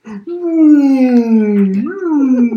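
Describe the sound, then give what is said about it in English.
A voice imitates whale song with a long, drawn-out moaning tone that slowly falls, then rises and swoops into a wavering call, loud with no other sounds. “And you can talk to whales like Dory.”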